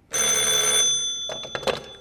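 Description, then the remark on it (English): An old-fashioned telephone bell gives one loud, shrill, metallic ring lasting under a second at 9 o'clock in the morning, a call from the coroner's office in Berkeley, followed by a few quick clattering clicks as the receiver is handled. No one speaks. “The fade-out came with me in Mallard's arms, just as the bell rang and saved me from going another round.”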